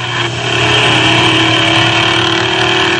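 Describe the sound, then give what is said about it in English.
A race car, number 91, roars steadily at high revs coming off the fourth turn down the straightaway on its official qualifying run, a loud, dense sustained drone with strong harmonic tones, holding full power without pause for the whole three seconds. “Tommy Webb bows that automobile off the fourth turn, down the straightaway, this time for the green starter's flag”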